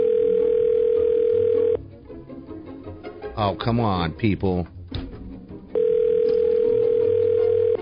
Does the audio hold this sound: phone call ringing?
yes